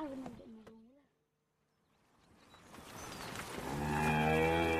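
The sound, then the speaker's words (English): Cattle moving up a field on the Limerick bank of the river separating Kerry and Limerick moo: a short low moo at the start, a quiet pause, then a longer, louder moo that swells and holds until the end. “On the Limerick bank, cattle are moving up the field.”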